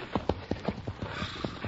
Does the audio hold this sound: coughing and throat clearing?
no